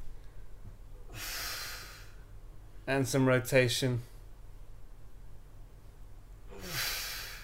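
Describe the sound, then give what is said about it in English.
Two slow, breathy exhalations framing a brief spoken phrase, each a soft airy rush lasting about a second, with a low hum underneath, as a person lying on their shoulder does abdominal breathing while stretching, pulling in the belly as the arm goes back. “And I have been combining this with a breath these days. So as the arm goes back, I'm pulling up on the gut bag.”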